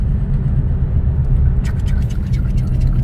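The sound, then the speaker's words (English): Steady car-interior road rumble, then halfway through the car's brakes start making a strange, harsh scraping noise in rough pulses that continues to the end. “Your brakes just made a weird noise.”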